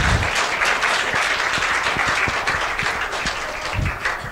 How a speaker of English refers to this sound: You guys can clap for the panelists.